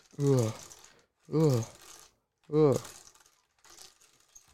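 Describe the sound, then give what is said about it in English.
A voice imitates numbered lottery balls spinning in a ball machine for a mind game, with three loud, swooping vocal bursts separated by short pauses, then a fainter trailing fourth. “Spin those balls”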